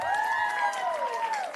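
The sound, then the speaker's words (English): An audience claps steadily in a dense, even patter, with a sustained high-pitched cheer or whistle gliding over the applause, as a cheerleading team's assistant coaches are introduced. No one speaks. “We're still going to clap for them anyway.”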